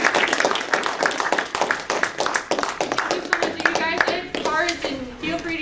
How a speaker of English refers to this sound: Okay, well, how about a round of applause for the speaker?